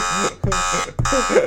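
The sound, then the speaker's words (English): A harsh, loud electronic buzzer blares in three long bursts separated by brief gaps, its rasping harmonic tone dominating, with voices faintly underneath. “We need the buzzer.”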